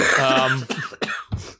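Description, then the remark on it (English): A person coughs several times in quick succession, a strained vocal sound followed by three sharp, harsh bursts, fairly loud. “I'll give you my minute to cough.”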